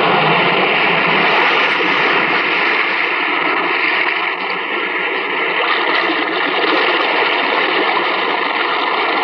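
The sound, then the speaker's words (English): A steady, loud rush of surging sea water echoing in a cave by the sea, a continuous roar with no pauses and no voices. “In this cave by the restless sea, we are met to call from out of the past stories, strange and weird.”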